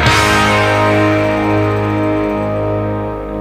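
An instrumental background music bed plays steadily with a sustained, buzzing distorted chord and a bright attack at the start, holding loud and even throughout with no voices.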